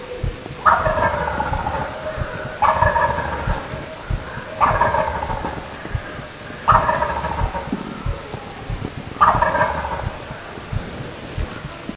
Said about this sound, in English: Gobbler is pretty fired up. Finally, after looking for him for what seemed like 15 or 20 minutes, I saw a little bit of movement, and that turkey is roosted in a tree, low in a tree, probably the first limb off the ground.